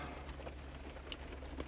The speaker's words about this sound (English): Listening to this damn rain.